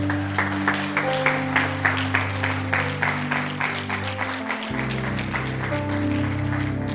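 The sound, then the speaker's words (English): An audience claps for Pastor Hernan in a steady, even rhythm over sustained keyboard chords, the clapping moderately loud throughout while the chords shift to a new harmony partway through. No one speaks. “Come on, clap it up for Pastor Hernan.”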